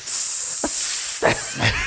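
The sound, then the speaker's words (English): A voice makes a long, steady hissing sound lasting about two seconds, imitating people hissing to jeer at someone. It is bright and fairly loud, with a few brief breathy bumps partway through and no words spoken. “Oh, they hiss.”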